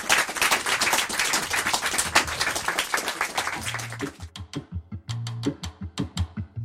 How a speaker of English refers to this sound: That is all we've got time for. Please give a very big round of applause for Katie Kitamura.